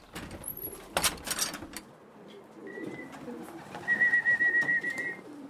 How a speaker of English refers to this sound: Then he goes straight to the pigeon loft to check on his birds.